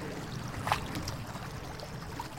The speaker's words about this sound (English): So you'd have to work out how many miles an hour the river flows. Okay, right, so we're going to test out how fast the water is flowing. Do a really rough experiment.